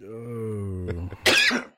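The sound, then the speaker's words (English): A drawn-out voiced groan leads into a single harsh, dry cough, fairly loud, with a short throaty catch before the main burst, from a person with a cough who turns away while coughing. “I have a bit of a cough, so I did try to turn away.”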